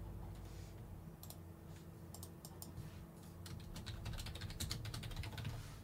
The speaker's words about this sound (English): Oh, I'm trying to go zoom, zoom, and the keyboard's not working.